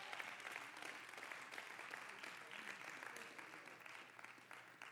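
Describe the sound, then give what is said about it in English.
An audience claps their hands in steady, dense applause lasting the whole stretch, a sustained wash of many overlapping claps with no voices on top. “I wish somebody just clap your hands about that.”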